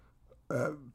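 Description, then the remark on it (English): A single short, low, gurgling burp erupts abruptly after a brief quiet moment, moderately loud, with a rough voiced rumble that fades out quickly. “That was a burp.”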